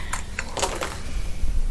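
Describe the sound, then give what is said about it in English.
Three dice are rolled, giving a few sharp clicking clatters in quick succession as they tumble and knock on a hard surface, with no talking. “Let's see what I can do with my three dice.”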